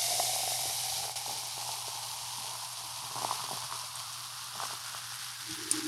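A warm Kickstart drink is poured over unmelted ice into a Contigo cup, making a steady fizzing hiss with scattered crackles and faint clicks of ice throughout, with no one speaking.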